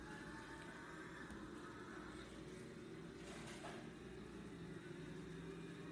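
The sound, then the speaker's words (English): A steady, loud car engine drone from a racing video game, a next gen Game Pass car driven at speed, runs throughout with a constant throbbing hum and a brief rising whine partway through. No one speaks. “Trust me, this thing is really cool. Especially the sound of the car.”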